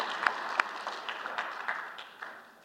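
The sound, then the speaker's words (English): A church audience claps for their pastor in a dense wash of applause, with a few sharper individual claps standing out, the sound gradually thinning and fading over a few seconds. “We can clap for him right now, but you're just going to make him cry even more.”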